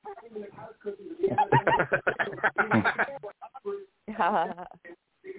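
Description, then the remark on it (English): A person imitates an owl with a series of warbling, breathy hoots, with a couple of shorter vocal sounds trailing off at the end. “all you got to do is say, what sound does an owl make?”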